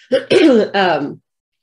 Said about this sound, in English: I am going to get some tea to help my little cough.